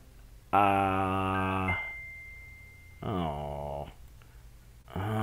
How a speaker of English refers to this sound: What is that shit? Sorry about that, my notification and phone came up.